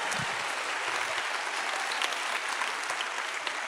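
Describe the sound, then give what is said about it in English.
A church audience applauds steadily during a morning service, many hands clapping in a dense, continuous wash of sound that holds an even loudness throughout, with no voices standing out. “Can somebody clap their hands in here this morning?”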